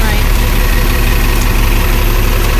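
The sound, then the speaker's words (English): A loud, deep bus engine rumbles as the bus passes people walking on a sidewalk past a bus shelter near a crossing, a heavy steady drone with broad roaring noise that holds at full strength through the short moment. “And wait for the loud bus to pass.”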